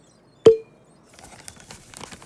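A single sharp pop, like a cap coming off a tube, followed by soft crinkling and rustling of a rolled-up paper being drawn out of a bottle and spread open.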